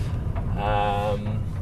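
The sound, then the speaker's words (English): A car engine rumbles low and steady as the vehicle rolls slowly into a car park to park, with a brief rising tonal whine in the middle of the short stretch. “Actually, I'll park us over in the car park over there, so we can.”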